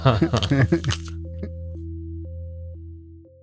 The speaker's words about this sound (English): I guess I'll chew another bite then.